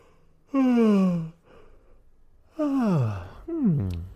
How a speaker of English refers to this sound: Wow. That was a very nice yawn.